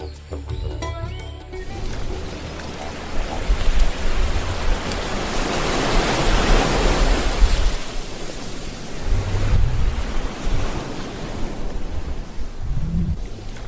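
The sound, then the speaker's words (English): Pacific Ocean surf roars on a bay on the coast at Gisborne, on the northeastern coast of New Zealand's North Island: a broad, hissing wash of water that swells and slowly recedes, with low rumbles underneath and a brief tonal sound at the very start. “we're recording on the Pacific Ocean, on the coast in Gisborne, New Zealand.”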